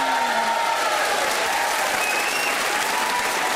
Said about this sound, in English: Ladies and gentlemen, that's the end of the show. Playing us out tonight, ladies and gentlemen, keep the applause going and please welcome one final time